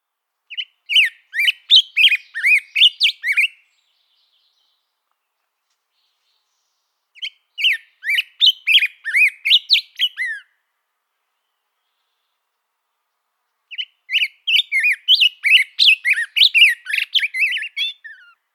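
A western tanager's daytime song: three hoarse, burry phrases of quick chirped notes, each a few seconds long and separated by pauses, with no voices.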